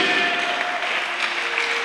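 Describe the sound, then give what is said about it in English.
A crowd claps steadily and densely throughout, a continuous wash of hand claps, with faint sustained musical tones lingering underneath. “Is it clapping? You are clapping.”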